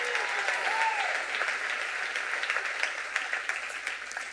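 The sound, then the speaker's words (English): An audience claps steadily for several seconds, a dense, even roar of many hands that holds at a fairly constant loudness, with a brief whistle-like tone near the start and no one speaking. “You want to clap? Go clap again.”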